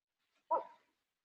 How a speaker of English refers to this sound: Sorry, I have a dog barking in the background.